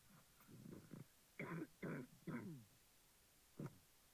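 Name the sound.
coughing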